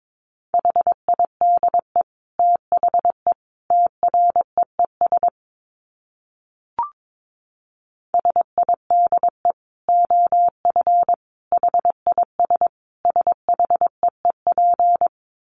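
Morse code practice tones at about 22 words per minute: a steady mid-pitched beep keyed in quick dots and dashes, broken by a pause with a single soft click, then resuming.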